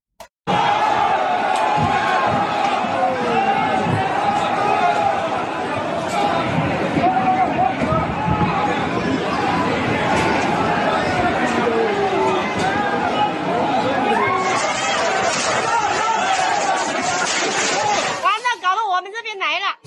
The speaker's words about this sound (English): In the southern Chinese city of Guangzhou, it seems residents have simply had enough of COVID restrictions. Footage shows thousands of people crashing through barriers and marching down streets in chaotic scenes.